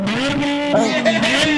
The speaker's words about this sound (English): Oh! You hear that? Oh! I mean, yeah, it sounds like a motorcycle. Oh! And by that, I mean oh for two. Come on, here, look, I'm going to put my phone up to the exhaust pipe.